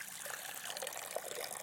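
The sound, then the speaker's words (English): Water pours steadily into a baptismal font during a baptism, a continuous splashing trickle at moderate volume with no voices. “This promise is made visible in these waters of baptism.”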